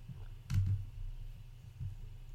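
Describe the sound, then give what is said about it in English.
A single crisp, fairly sharp mouse click that rolls a d8 hit die on a character sheet, with a faint second tap right after it, over a steady low background hum with no one talking. “Did I just click the hit dice?”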